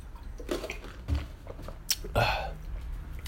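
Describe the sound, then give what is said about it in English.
Someone takes a swig of water: soft gulping and swallowing, a sharp wet click, then a louder, drawn-out swallow near the end, with no talking. “I need to take another swig of water.”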